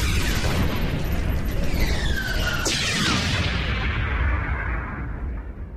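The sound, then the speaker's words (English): A deep, rumbling explosion rocks the spaceship Fat Man, booming through a dense, roaring low end, with a sharp crack midway and sweeping whines, then the roar slowly fades as high tones die away. “Aaron got halfway out of her seat when an explosion rocked the ship.”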